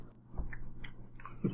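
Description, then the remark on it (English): Quiet chewing of food at a meal, with a few soft wet clicks and crunches at an uneven pace over a low steady hum, with no talking. “He sort of lapses back into silence and concentrates on chewing.”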